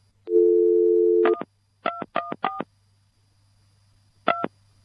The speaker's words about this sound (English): Now, I'm going to take just a moment. You're going to hear the phone, and I'm going to make an effort to get a hold of her.